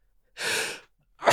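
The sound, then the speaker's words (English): A loud, breathy sneeze from someone with an allergy, followed after a short pause by the sharp start of another. “Well, we might need to end this before I sneeze my brains out.”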